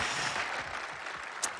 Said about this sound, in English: Let's give each other a round of applause for being here today. Come on, look at somebody and give them a round of applause. Yeah.